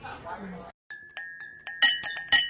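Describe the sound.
Glasses clink together repeatedly as someone practices a holiday party toast, about half a dozen bright taps that leave a sustained ringing tone, coming in an uneven rhythm after a brief stretch of talking and a short pause.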